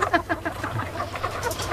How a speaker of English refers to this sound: I'm gonna tell you right now. Never seen such nervous chickens.